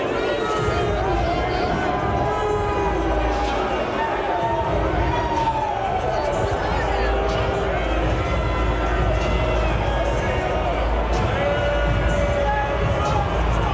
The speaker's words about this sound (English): I just want to point out that they're on the Clemson side. I know. The Clemson side has some boos. That's interesting to me. All right. But it's not really that many. No, it's really not.